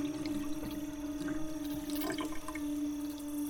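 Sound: running water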